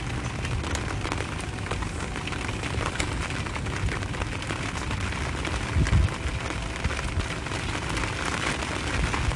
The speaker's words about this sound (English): Isn't it crazy that I'm just sitting out here with rain pouring on me from the skies?